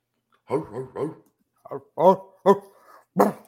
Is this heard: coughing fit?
no